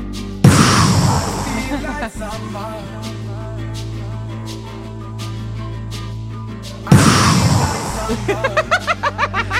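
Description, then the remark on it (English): Two loud, booming gunshot-like blasts, played as sound effects from a sound pad, ring out several seconds apart, each with a short echoing tail, while muffled voices murmur in the background and a quick run of pulsing pops follows the second. “Gunshots?”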